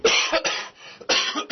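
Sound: cough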